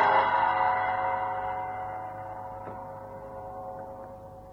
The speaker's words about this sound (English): A gong sounded deep inside the building.